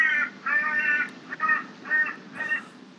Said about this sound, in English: That's an interesting sound there in the background. What are we listening to? Oh, that's just the birds. There's a bird's nest outside my window here, yeah. Wow! Those are birds.